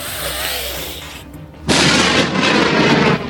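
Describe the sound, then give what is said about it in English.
A sound effect of a dragon's lightning blast: a loud, sudden crackling explosion erupts after a moment of low rumbling, holding a sizzling roar for over a second before cutting off sharply. “And just this explosion of lightning into an area where a lot of the guards were.”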